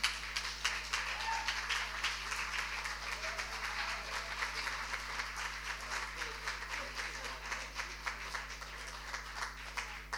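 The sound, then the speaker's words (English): An audience at an author event applauds steadily for about ten seconds for one of the authors, a dense, continuous patter of many hands clapping together, even in intensity throughout, with no voices standing out. “Big hand of applause, please.”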